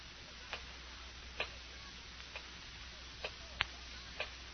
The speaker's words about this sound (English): Terrible clock. Ticking. Ticking. Yeah, I know. I've been sitting here listening to it. I can't stand it anymore. I'll stop it.